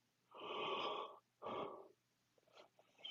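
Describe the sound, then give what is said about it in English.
A drawn-out yawn: a long breathy intake followed by a shorter sighing exhale, then a few faint mouth and breath sounds, with no talking. “Boy, I'm yawning up a storm today.”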